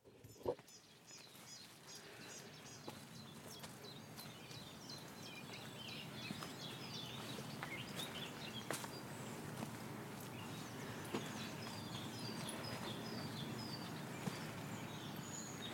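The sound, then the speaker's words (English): A busy chorus of spring birdsong fills a valley of tangled oaks in the Brecon Beacons on an overcast day, with many overlapping chirps and trills over a steady low rustle and soft footsteps of someone walking. No one speaks. “So climb a wild ridge with me, and then explore a hidden valley full of tangled oaks with a symphony of spring birdsong at every step.”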